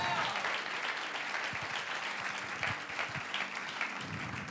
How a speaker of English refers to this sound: Can we just give the Lord a big shout and a hand clap of praise for what he's done?